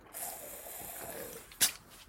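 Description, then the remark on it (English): A person sitting in their room sips a drink: a soft, airy slurping hiss builds, then a brief sharp sucking burst, then quiet. No one speaks. “I'm also gonna have to take a sip every so often, so you'll just, hear this.”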